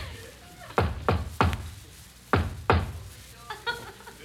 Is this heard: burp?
no